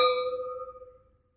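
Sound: wine glasses clinking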